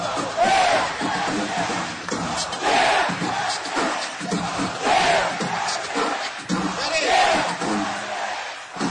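A large crowd shouts a rhythmic call-and-response chant. On a leader's cue, sections of the crowd yell "ho", "yeah" and "hell yeah". Loud bursts of massed yelling repeat roughly every two seconds, with steady crowd noise between them.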